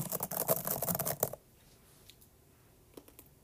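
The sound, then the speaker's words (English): Rapid typing on a Magic Keyboard, a dense burst of clicking keystrokes for about a second, then quiet with a couple of faint isolated taps afterward. “I know that sounds like a computer. No, I don't. Exactly not. It's just the magic keyboard.”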